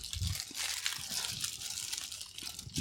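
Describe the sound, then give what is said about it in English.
Someone eating Christmas-shaped Reese's peanut butter candy: soft, wet chewing and crunching with a steady crinkly hiss and scattered low thumps of the jaw, moderately loud, with no talking. “Oh, no, we have to keep eating Reese's till we find one?”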